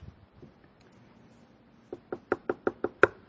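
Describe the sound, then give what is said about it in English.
A quick series of about seven firm knocks on a door, evenly spaced and growing slightly louder, after a short quiet pause with no voices. “Jesus is standing, tapping on the door of your heart.”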